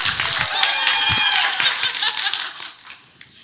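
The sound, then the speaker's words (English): An audience breaks into a burst of dense, steady clapping that holds for a few seconds, then thins out and fades away at the end. “Does somebody clap for her?”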